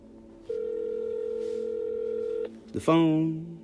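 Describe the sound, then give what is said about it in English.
A telephone emits a steady, clear dialing tone for about two seconds, then cuts off and is followed by a short, bright burst of higher warbling tones. “But I'm quote unquote dialing.”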